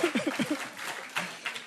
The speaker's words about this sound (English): That was a weak round of applause. Not what I'm looking for, applause.